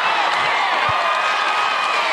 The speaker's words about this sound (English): The crowd quickly started chanting to let her audition.